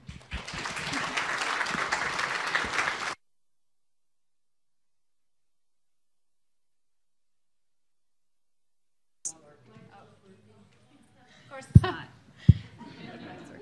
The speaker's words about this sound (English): Please give a quick round of applause for our faculty.